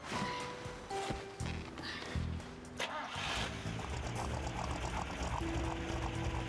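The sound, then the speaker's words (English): A car engine cranks over and catches, then roars as it is revved for a power and RPM diagnostics test, a loud, steady mechanical rumble with a brief harsh whine mixed in. “Why don't you start it up and give us some gas?”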